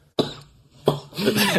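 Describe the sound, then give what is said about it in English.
Two sharp coughs with a short pause between them, the second trailing into a rough, raspy throat-clearing rasp. No talking. “Excuse my coughing there.”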